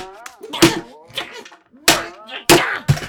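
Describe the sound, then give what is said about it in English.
Four loud, sharp metallic whacks land at uneven intervals as a hammer repeatedly strikes a machine in its vital machinery area, with ringing, voice-like tones and murmurs filling the gaps between blows. “Warning, repeatedly hitting this machine with a hammer may void the warranty.”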